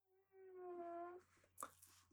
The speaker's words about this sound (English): Cat now snoring very loudly in the background. I could nudge him. I really don't want to.